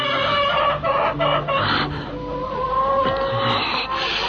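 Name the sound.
chicken clucking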